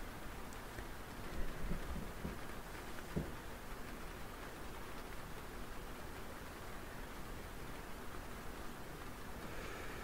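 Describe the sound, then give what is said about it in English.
Steady, dense hiss of heavy rain pouring down continuously during a storm, heard from inside a house, a broad wash of sound with occasional brief thumps, constant throughout with no one talking. “The rain is a bit loud here, but it might be anywhere.”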